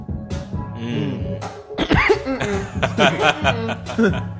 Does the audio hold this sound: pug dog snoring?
no